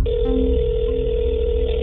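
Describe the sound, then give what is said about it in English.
A steady electronic ringing tone over a phone line as a call to AAA rings, one unbroken buzzy purr held for nearly two seconds at a constant pitch, moderately loud, with no voices. “Then I dialed AAA.”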